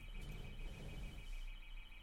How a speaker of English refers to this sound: Outside. That's outside, I think. Oh, it's gone. Someone's house alarm.